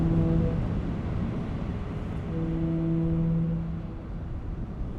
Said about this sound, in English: We're listening to the sound of foghorns, a sonic component in this ship-to-shore technological infrastructure.